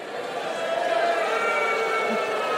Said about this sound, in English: Yeah, interesting. A lot of guys booing. Interesting.